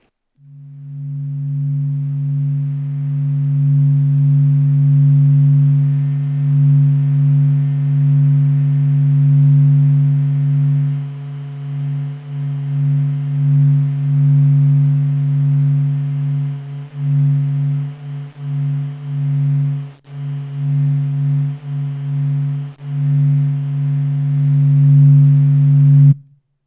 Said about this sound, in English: recorded the data across 40 days and then compressed it down by a factor of 42,000 to bring it into the range of human hearing. So what does the sun sound like? Well, it's kind of a pleasing, low, warm hum.